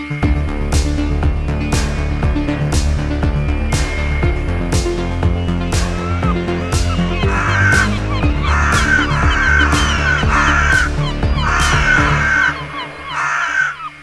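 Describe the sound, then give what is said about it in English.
Harsh, crow-like cawing from birds drawn by bird feed repeats in a steady rhythm, loud, with several birds calling over one another against a dense, continuous background of bird noise. No one speaks. “Get the fuck out of here, birds.”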